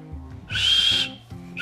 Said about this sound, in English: That sounds funny. It's more of a passing of air than it is a whistle. Yeah. So when I try and whistle, I actually blow air, and then I whistle very quietly. I can only hear myself.